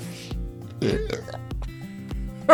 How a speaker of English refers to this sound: I can't believe I just belched.